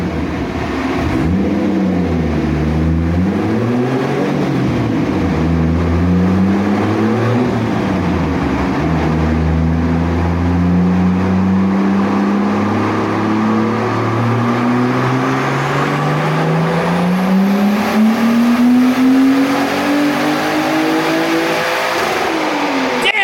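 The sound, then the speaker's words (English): The engine of a 5-speed 4x4 from 2001 revs continuously, pitch rising and falling through a few gear-like sweeps before climbing steadily, loud throughout with no talking. “you'll be pleased to know it's a 5-speed from a 4x4 from 2001.”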